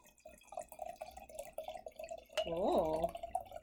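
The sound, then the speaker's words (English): Barrel-aged white wine of 13.5% ABV pours into a glass, a steady trickle that swells near the end into a brief run of gurgling glugs with a rising, ringing pitch. “Pour this bad boy.”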